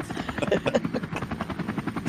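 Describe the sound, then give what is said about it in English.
A Helicopter Gak toy's helicopter sound effect plays, a rapid, steady chopping whir of rotor beats that runs continuously for about two seconds at moderate volume. “Helicopter Gak. I love the sound effect to it.”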